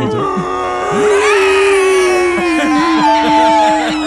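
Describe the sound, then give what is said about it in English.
A person voices the monster King Modo screaming after being stabbed in a weak point of his armor: a long, strained, loud scream, rising in pitch partway through and holding a raw, wavering tone for about four seconds without pause. “Modo screams.”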